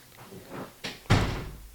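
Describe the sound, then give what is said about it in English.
A woman shuts a door with a solid thud, preceded by a softer knock of the latch or frame. No voices, just the brief clunk and a fading rattle. “She shut the door.”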